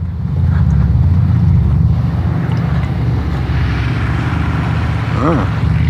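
A loud, steady motorcycle engine rumbles for several seconds, a deep throaty drone with a brief rising whine near the end.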